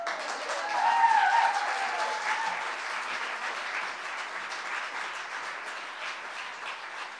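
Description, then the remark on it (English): Sustained audience applause for Ellen, a dense wash of many hands clapping that swells early, then settles into a steady, slightly fading roar, with a brief whoop near the start. “Please, round of applause for Ellen.”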